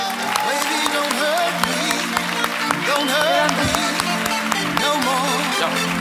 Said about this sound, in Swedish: En stor applåd för Clara Henry och Cissi Wallin.